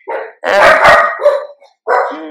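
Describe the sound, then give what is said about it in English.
A dog barks loudly, a few harsh, drawn-out barks with brief pauses between them and no talking. “The dogs remember.”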